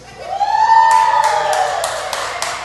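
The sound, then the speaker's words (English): A crowd of women in an audience cheers loudly when called on, opening with a sustained high-pitched whoop, then bursts of clapping and shouting that carry on steadily to the end. “It sounded like there was more power from the ladies than the men.”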